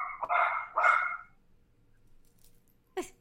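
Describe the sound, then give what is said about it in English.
A dog barks twice in quick succession, loud, then falls quiet before a short, sharp yip near the end. No one speaks. “I'm just having her take the dog off.”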